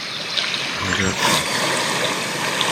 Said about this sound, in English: Now, here is my Calm app. Yeah. And listen to that. You can listen to stories before you go to bed. Hold on. You can listen to the rain.